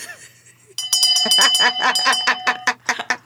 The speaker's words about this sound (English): Shame on us. Actually, just ring our own shame bell. Hold on.